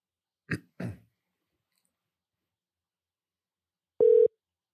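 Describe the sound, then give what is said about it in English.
Two quick throat clears, then a pause, followed by a single short, steady mid-pitched electronic tone like a telephone ringback as a phone call is placed to a guest. “All right, let's call him. Give him a ring.”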